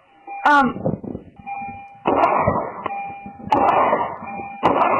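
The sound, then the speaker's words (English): The door-open warning chime of a car that won't start, stopped off the PGA exit on 95, dings over and over at a steady pace, about once every second or so, against a muffled, noisy background. “That's why you hear that dinging of the door open indicator in the background.”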